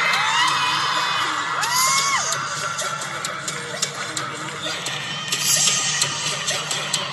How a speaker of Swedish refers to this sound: Vi står vid varsin ingång. I Globen. I Globen. Och vi hör hur publiken är helt insane.